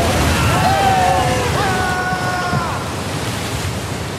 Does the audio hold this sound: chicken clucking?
no